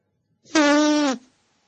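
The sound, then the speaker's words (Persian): A single loud fart, drawn out for over half a second with a steady, reedy buzzing tone that sags slightly at the end, heard alone with no talking. “بفرما، هنوز لوبیا نخورده شیمیایی بزه.”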